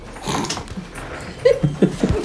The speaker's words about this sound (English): The dogs have opened the door and have snuck in the room. And they won't leave!